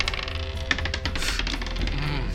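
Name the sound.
dice being rolled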